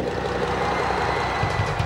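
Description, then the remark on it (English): A huge concert crowd roars in a dense, unbroken wall of noise, steady and loud throughout, with no distinct voices standing out. “Listen to that crowd.”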